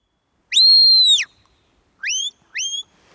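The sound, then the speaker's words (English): A shepherd's whistle commands to a border collie sheepdog during a herding demonstration, giving directions such as go left, go right and steady. One long, steady two-toned whistle is followed by two shorter rising whistles in quick succession, clear, with no talking. “What are those whistles actually saying to them then?”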